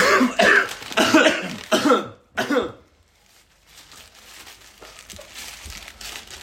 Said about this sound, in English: So what I'm going to do is on three, cough. And then you open it up so it won't sound like it's food. Ready? Okay. One, two, three.